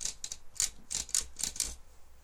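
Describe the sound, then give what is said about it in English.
Typewriter keys clack in an irregular series of sharp mechanical taps as the typewriter is played like a musical instrument, about seven or eight strikes with short gaps, moderately quiet, with no voices. “Playing on the typewriter. It's a musical instrument.”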